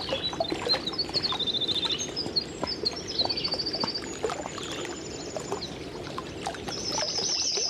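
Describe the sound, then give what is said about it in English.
A yellow-rumped warbler sings from above, several short, high, rapid trilled phrases that are not its typical song, repeating every second or two over a steady background of lapping, splashing water. No one speaks. “I'm not positive, but I'm pretty sure it's a yellow-rumped warbler.”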